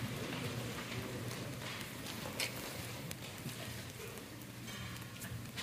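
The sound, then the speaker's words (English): A crowd taps out soft, rapid one-finger claps to demonstrate a sound laser, a dense, steady pattering that sounds almost like rain, holding an even level throughout with no voices over it. “Why don't we just clap with one finger?”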